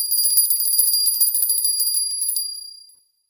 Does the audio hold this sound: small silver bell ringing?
yes